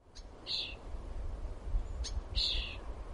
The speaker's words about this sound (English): Baby birds, not quite ready to fly, stuck in their nests, waiting for their food to be delivered.